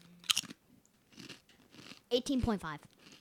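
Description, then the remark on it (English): A sharp crunch of a snack being bitten, followed by a few fainter chewing crunches, then a brief voiced sound from someone. “Oh, sorry, I keep eating them and crunching.”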